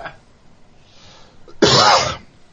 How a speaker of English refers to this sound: The cough actually works in that cameo as well. What's that? The cough that you just did after doing that would work in the … cameo.